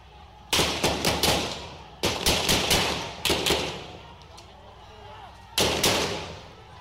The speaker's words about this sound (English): Protesters and police had a heated confrontation. Some protesters threw rocks. The police shot into the crowd. 3 people were killed.